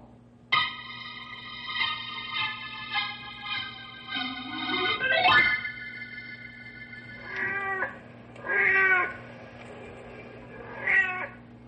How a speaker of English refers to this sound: The big tomcat you're hearing on the prowl is called Blackie.